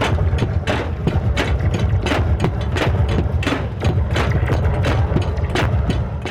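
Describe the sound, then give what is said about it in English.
During a live show, a performer hits and scrapes a metal pipe along springs connecting human instruments, a loud, dense clatter of rapid, irregular hits, with a boomy low rumble and grinding metallic rasp running throughout. “Another performer takes a pipe and starts to hit and scrape along the springs that connect the human instruments.”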